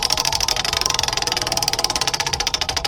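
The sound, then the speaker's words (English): A prize wheel spun to choose the game to be played gives off a fast, steady stream of sharp ticks, loud and continuous throughout, with no voices over it. “Would you like to spin the wheel, see what you're playing? Spin it.”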